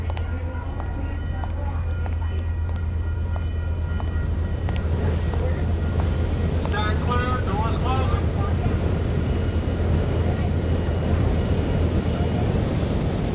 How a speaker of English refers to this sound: Okay, we're here at the outpost Palm Springs station. You can tell it's a little windy and the sand is blowing.